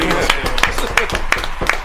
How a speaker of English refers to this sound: Let's clap it up for my man